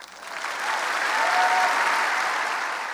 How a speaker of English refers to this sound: Buttigieg received his biggest applause at today's address at the IU Auditorium when he addressed global climate change and outlined his support for a carbon credit tax system in the U.S.